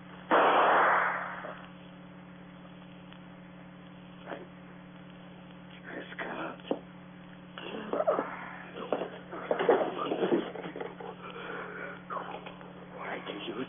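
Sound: gunshot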